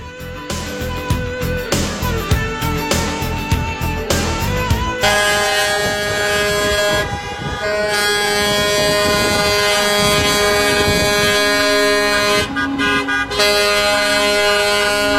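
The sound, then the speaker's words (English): A loud chorus of car and truck horns blares nonstop at a reopening protest outside the Capitol in Harrisburg, Pennsylvania, overlapping honks and long air-horn blasts layered together, with choppy bursts of noise early on and no talking. “Quite a few cars and trucks and people in Harrisburg, Pennsylvania, doing one of those open things up protests.”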